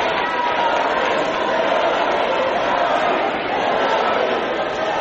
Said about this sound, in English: So the rest of the crowd starts chanting Hillary.